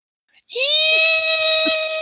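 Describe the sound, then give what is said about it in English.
A single sustained, shrill cartoon scream starts abruptly and holds steady at high pitch for about a second and a half, loud, with no talking. “I need to find the shrillest... If I can find that scream from Duckman that Duckman does, put that in here right now.”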